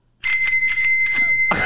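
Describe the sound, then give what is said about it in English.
A bicycle bell rings loudly in a bright, continuous metallic trill, pulsing rapidly for about a second and a half with no talking over it. “This is a bell, guys. This is a bike bell.”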